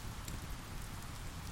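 rain falling

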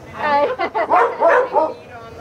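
dogs barking

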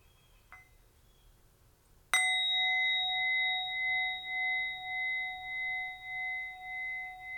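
meditation bell ringing

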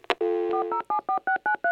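telephone dialing tones

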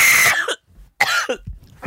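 coughing

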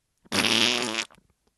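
loud fart

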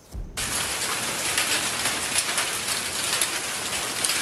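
hailstorm

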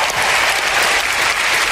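audience applause and cheering

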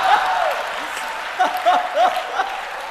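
applause

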